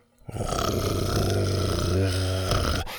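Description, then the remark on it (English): A deep, rumbling growl from Buck, a T-Rex looking into the bushes, rises quickly and holds steady for nearly three seconds, loud, then cuts off abruptly. No one speaks. “Buck was looking into the bushes and growling.”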